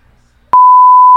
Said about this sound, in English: Should I just put a bleep right before that?